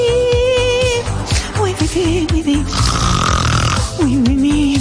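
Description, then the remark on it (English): Loud, continuous snoring, rough and rattling, with wavering whistle-like tones riding over the breaths; no one speaks. “Get involved, and your loved one Snore could be a broadcast of the nation.”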